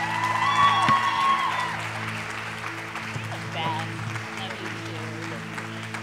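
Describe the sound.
A large audience applauds steadily in a reverberant hall, dense clapping holding for several seconds over a sustained musical drone, with a few cheers and voices mixed in.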